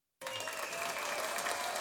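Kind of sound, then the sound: crowd, applause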